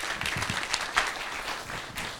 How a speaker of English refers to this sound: give him a clap.